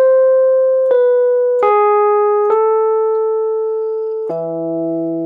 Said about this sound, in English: there is this really wonderful tune that happens sort of high up in the guitars.